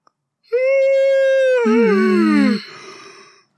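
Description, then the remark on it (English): A long voiced yawn: a loud, steady high tone that drops into a lower, sliding groan, then trails off into a breathy exhale. No other sounds accompany it. “I'm gonna yawn.”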